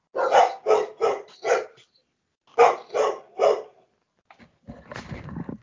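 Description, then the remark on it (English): A dog named Denali barks in two quick bursts, four sharp barks then three more after a short pause, followed by some rustling and shuffling noise. “he has a dog that's literally named Denali.”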